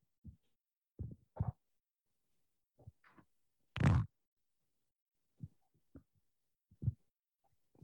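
A brief, loud, buzzy fart bursts out midway, set among several soft, dull low thumps scattered before and after it. No one speaks.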